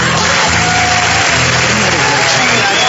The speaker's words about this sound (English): Can't believe you're all clapping out there, for crying out loud.